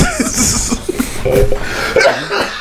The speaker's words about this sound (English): Yo, you gonna have to stop coughing. I'm sorry. COVID is still rapping. It's the smoke. Is it? Yeah. We all got it. Blame it on the smoke.